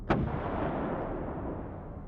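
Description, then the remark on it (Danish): A boat engine that will not start, as the skipper tries several times, backfires with a single sharp bang, followed by a deep, steady rumble that carries on for a couple of seconds. No one speaks. “Skipperen forsøgte flere gange, men det eneste, han opnåede, var, at motoren gav nogle enkelte knald, der for os lød omtrent som kanonskud.”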